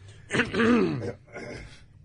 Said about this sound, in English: I mean, of what everybody's been saying here, I'm not going to clear my throat again.